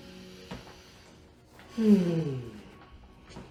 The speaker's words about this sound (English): It all starts with the slow and controlled breathing.